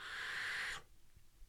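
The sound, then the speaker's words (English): A vape device lets out a steady, airy whistle during a draw, holding one high-pitched tone for just under a second before cutting off abruptly, leaving faint low rumble. “What you can knock is that whistle. That is a whistle. There's no way around that whistle.”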